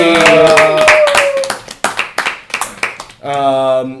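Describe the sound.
A loud round of applause: dense, overlapping clapping with whooping voices, thinning to a few separate sharp claps before a sustained vocal cheer rises at the end.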